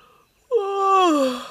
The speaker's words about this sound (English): It looked fair, peaceful and cosy, so he stretched out his tired legs and gave a big yawn.